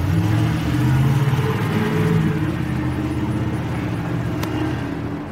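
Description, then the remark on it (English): A heavy construction truck marked Don Mud Construction drones loudly beside a house, its low rumble holding steady and then easing slightly as it speeds off. No voices are heard. “Then, all of a sudden, the truck speeds off in a hurry.”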